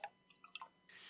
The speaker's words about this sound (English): if you're gonna pour water, you should acknowledge that you're pouring water and not pissing.